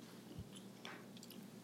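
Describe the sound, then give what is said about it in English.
Soft chewing with a few brief crunchy bites and wet mouth clicks spread irregularly over a quiet background; nobody speaks. “I'm trying to pull it away when I chew, you know?”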